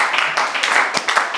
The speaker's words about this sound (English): Oh, let's clap our hands unto the Lord and worship Him.